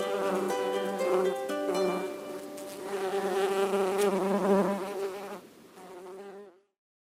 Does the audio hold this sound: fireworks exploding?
no